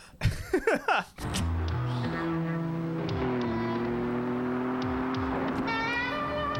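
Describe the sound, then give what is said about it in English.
In a promotional video for Bugle Boy jeans, a car driven fast by a woman drones steadily at speed, a sustained humming whine that shifts slightly in pitch, preceded by a second of sharp, clattering bursts at the start. “Here's a lady driving a car. She turns around. She's driving fast.”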